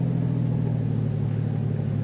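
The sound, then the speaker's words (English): A car engine hums with a steady, low rumble throughout, fairly loud, as the vehicle keeps driving and turns without pause. No one speaks. “Hey, what are you turning here for? I see a car parked down on the road there.”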